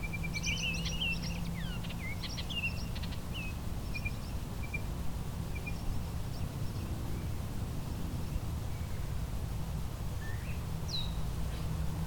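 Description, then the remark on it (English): A blue-winged warbler sings outdoors, its thin high notes coming in short bursts over the first few seconds and again near the end, above a steady low background rumble. “Behind me, the blue-winged warbler, just sang again”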